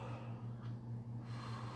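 deep calming breaths

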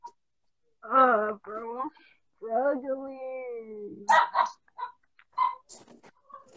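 dog barking

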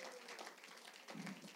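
audience clapping

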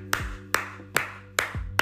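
hand clapping

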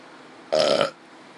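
burp

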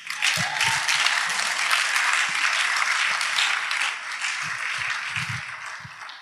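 audience clapping

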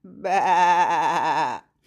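sheep bleating

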